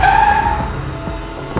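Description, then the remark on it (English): A taxi pulls up with a loud, high tire screech lasting about half a second, followed by a low engine rumble and a few soft thumps, with no talking. “Oh no, he's getting in the car. I could lose him forever. Taxi!”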